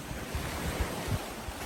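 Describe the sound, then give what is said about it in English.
Gentle waves of Lake Superior lap against a sandbar of tumbled pebbles at the shore, a soft continuous wash with low rhythmic swells, over a steady breeze and faint wind rumble on the microphone. “I descend to a cabin at the shore, waves lapping at a sandbar of tumbled pebbles.”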